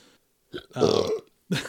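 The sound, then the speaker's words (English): A loud burp with a rough, throaty rumble, framed by short breathy bursts just before and after it, with no talking. “Yeah, well, if you're gonna burp, you know, give it your all.”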